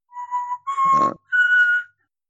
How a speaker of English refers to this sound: Who the hell is whistling?